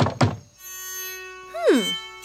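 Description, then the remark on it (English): Two quick, heavy knocks on a wooden cottage door late at night toward the end of autumn, followed by a sustained eerie musical tone that swells and then slides downward in pitch. “But late one night, toward the end of autumn, she was awoken by a knock at her cottage door.”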